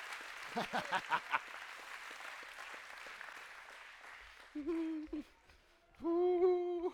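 audience hand clapping

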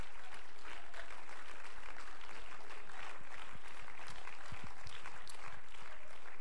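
audience clapping hands

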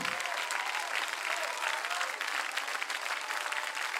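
audience clapping hands

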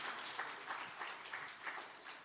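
audience applause welcoming speakers

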